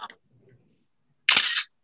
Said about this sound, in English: Oh, right, I even get the shutter sound, man. Now we know for sure that it popped up there.